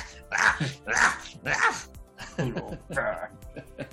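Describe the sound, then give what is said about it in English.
A person imitates a small poodle's barking with about six quick, yappy vocal bursts in an uneven rhythm, fairly loud, with no other sounds. “I was kind of hoping you'd say donkey or, you know, pig or, no, a poodle.”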